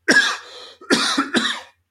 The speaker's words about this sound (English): Excuse me. I obviously did not get enough water during the break. You know, I'm on the West Coast and we have fires here. You have no excuse, right? I'm the one that should be coughing over here.